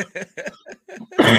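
A fairly loud run of short throaty coughs, four quick bursts in a row, then a longer, harsher and louder cough to finish, with no talking.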